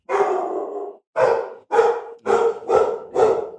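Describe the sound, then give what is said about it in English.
Two big pit bulls bark loudly, a long opening bark followed by five quick, forceful barks in a steady burst, with no talking. “Dogs are going crazy.”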